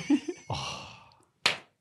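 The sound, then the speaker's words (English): A single sharp, close slap to the face cracks out near the end, following a breathy, groaning vocal exhale and brief grunts. “That's Inoki just slapping the taste out of …'s mouth.”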